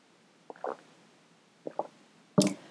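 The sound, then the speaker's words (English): Quiet gulping sounds of someone drinking water come in two pairs of short wet swallows, followed by a louder clunk like a glass being set down, with no talking. “I just need a drink of water real quick.”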